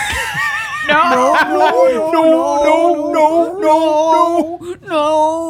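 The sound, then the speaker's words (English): A person loudly imitates a dog trying to say "no," producing drawn-out, wavering howl-like vocal sounds in several rising and falling bursts. “And teach it to say no.”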